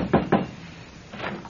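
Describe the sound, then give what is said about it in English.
Two quick, solid knocks on the wooden door of a place with rooms to rent, followed a moment later by a pair of softer knocks, with no voices. “Oh, come on. Come on, somebody. Answer the door.”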